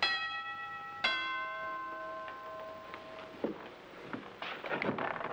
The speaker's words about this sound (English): And then the doorbell rings.